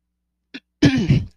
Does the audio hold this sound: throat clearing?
yes